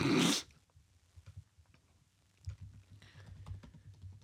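Fast, forceful typing on a computer keyboard: irregular clacking keystrokes that grow busier and louder toward the end, opened by a brief loud rushing burst. No voices.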